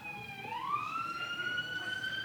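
A steady emergency siren of a passing vehicle wails in a long rising sweep, fairly loud, over a low rumble of traffic noise, with no talking.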